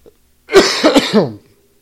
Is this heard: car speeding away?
no